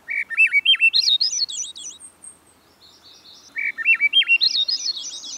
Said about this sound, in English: Some believe the song of the wood thrush to be the most beautiful bird song in North America. Others select the song of the hermit thrush. Still others name the singing of the Swainson's thrush.